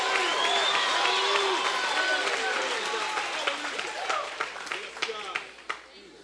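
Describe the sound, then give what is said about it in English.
A worshipping crowd roars and shouts loudly on a Sunday morning, a dense wash of voices and cheers, with scattered claps breaking through as the noise gradually thins toward the end. “Let the lion of the tribe of Judah roar one good time on a Sunday morning right here.”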